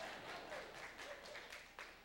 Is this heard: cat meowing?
no